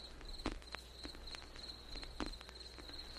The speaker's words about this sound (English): Got the crickets and shit.